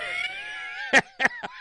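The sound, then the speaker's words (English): A cat gives a long, drawn-out, wavering meow, then three short, sharp bursts of sound follow in quick succession, moderately loud. “Stop crying, annoying cat.”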